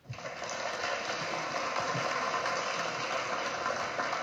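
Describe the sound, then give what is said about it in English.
A round of applause sound effect, played from a stream deck, lasts about four seconds: a steady, dense crackle of many claps that starts abruptly and holds an even loudness throughout, with no voices over it. “No, that was my round of applause from my stream deck.”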